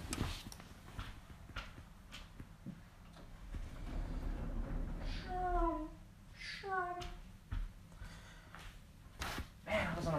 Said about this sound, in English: let's go home as I take a 5-second break to close my door.